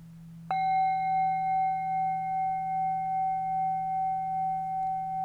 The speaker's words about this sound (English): Notice. When we hear the next bell, the meditation will be over.